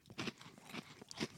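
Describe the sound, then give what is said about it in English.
Crunchy chewing of a snack mix of caramel popcorn, vanilla Chex Mix cereal, Toast Crunch and some chocolate Chex, with three main crisp bites about half a second apart and softer crackles between them, with no talking. “It's caramel popcorn and vanilla Chex Mix cereal, along with the Toast Crunch.”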